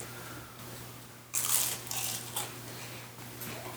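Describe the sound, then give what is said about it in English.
A crisp bite into a vanilla wafer gives one sharp crunch, followed by a few softer crunching chews, over a steady low hum with no talking. “It tastes like a wafer. That's a wafer. It's a wafer. It's like a vanilla wafer.”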